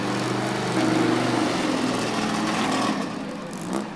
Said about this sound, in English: Harley-powered Prius moves under its own power. This is a miracle of miracles.